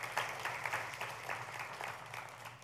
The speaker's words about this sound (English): That man gave his life to Jesus right in the coffee house at our Sandusky campus last week. Yeah, applaud what God did, right?